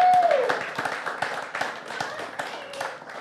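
An audience claps together in a steady, dense patter of many hands that keeps going for the full few seconds. A brief sliding tone sounds at the very start.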